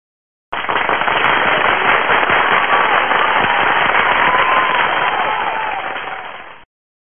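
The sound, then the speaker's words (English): A burst of crowd applause for a listener who made a donation, dense and crackling with many overlapping claps, holding steady and loud for about six seconds before tapering off and stopping abruptly. “so let's all applaud him again.”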